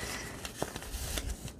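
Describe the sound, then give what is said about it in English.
Soft piano paper being handled while being tried as a backing, with quiet rustling broken by a handful of brief, irregular crinkles and crackles. No one speaks. “I've got some piano paper here. It's very soft and innocent, but it might be a nice little backing.”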